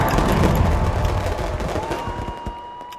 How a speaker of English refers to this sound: We would not miss New Year's for the world. We make sure we're aligned, take a deep breath, and then the fireworks start.